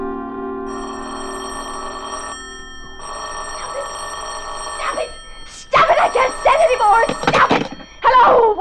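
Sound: telephone bell ringing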